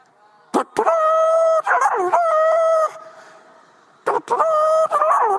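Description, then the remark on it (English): A trumpet-like horn blown in a few loud, wavering blasts, the strained pitch sliding up and down almost like a crowing rooster, with a short pause before the final burst. “The word Jubilee literally means to blow the trumpet.”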